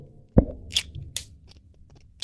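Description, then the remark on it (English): A match snaps with a sharp, loud crack as it breaks while being struck to light a candle, followed by two brief scratchy, hissing scrapes and a few faint ticks in an otherwise quiet moment. “Your match broke. The match broke. It shattered.”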